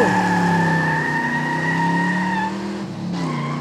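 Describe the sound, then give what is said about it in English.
Several voices imitate the engine of a racing Ferrari mobility scooter together, a loud, sustained buzzing drone whose pitch sags slightly before a brief break and a final rise, with no ordinary talk. “Let's all pretend to be racing a Ferrari mobility scooter.”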